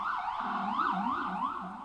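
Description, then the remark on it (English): Emergency vehicle sirens wail continuously outside, their pitch rising and falling in overlapping sweeps at a steady, moderate loudness, with no one talking. “The sirens seem to be coming after this motherfucker.”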